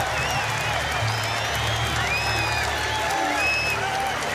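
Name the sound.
stadium crowd cheering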